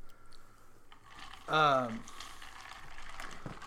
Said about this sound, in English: Oh, you know what? I meant to pour some of this in there. My bad. Add a couple more.